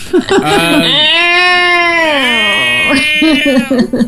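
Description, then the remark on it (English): A person imitates a dying cat with a long, strained, wailing meow that bends slowly downward, framed by brief choppy vocal noises before and after. “That dying cat sound.”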